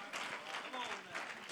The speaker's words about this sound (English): You don't believe it? You don't believe it? If you believed it, you'd clap a little louder than that.